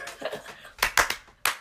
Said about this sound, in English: That was supposed to be like the drum roll thing, but like I didn't know what to do it on, so I just clapped my hands.